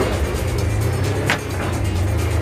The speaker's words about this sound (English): It's the perfect car for Silicon Valley, it really is. There it is, gentlemen, the fastest car in the world.